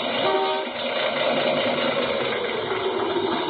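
A car engine runs steadily for a few seconds, a rough, rumbling idle with an uneven, sputtering edge, misfiring with about half its spark plugs not firing. No voices are heard.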